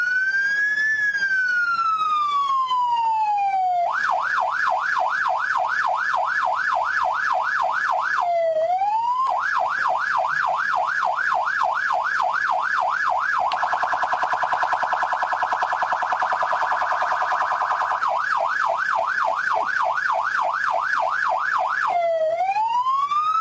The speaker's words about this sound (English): Would be funny if I thought the problem was with the siren, so I bring a better siren this week.